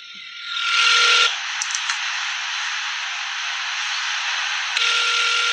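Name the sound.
telephone ringing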